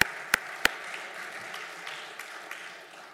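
A church audience claps their hands at the preacher's prompt during a sermon, starting with a few sharp, loud claps and settling into a steady wash of scattered applause that gradually fades.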